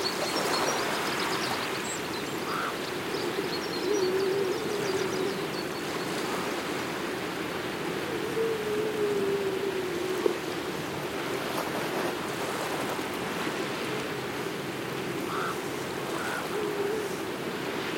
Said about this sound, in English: Well, this is completely magic. We're sat right down at sea level now, just a bit further around the coast, and we've been sitting listening to the seals singing. So there's a colony of seals all basking on a set of rocks